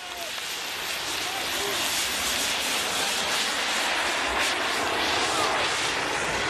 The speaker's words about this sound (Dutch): Klinkt als een jetpack. Ja, precies. Het klinkt precies als een voormalig skikampioen dat het kanaal oversteekt in een jetpack, toch? Ja, als je daar een geluid aan zou moeten koppelen, zou het deze zijn.